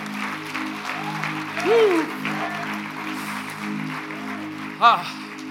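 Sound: audience applause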